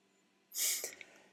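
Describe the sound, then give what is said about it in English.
A single sharp sneeze bursts out of near silence, a loud breathy hiss lasting about half a second before trailing off with a faint sniff. “Bless you.”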